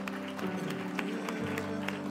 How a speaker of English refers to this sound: Let's put our hands together. Give the Lord a clap offering of praise.